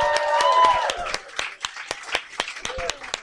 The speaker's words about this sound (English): And we're lucky to have her on the show tonight. So can you please start your amazing round of applause for our fantastic guest tonight,